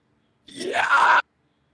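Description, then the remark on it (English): A single high-pitched, raspy fry scream lasting under a second, sung as a live vocal demonstration using the vocal fry cords, with a rising, strained tone and gritty texture, then cut off abruptly into silence. “So your fry scream is going to be a high pitched scream. So it uses what's called your fry chords.”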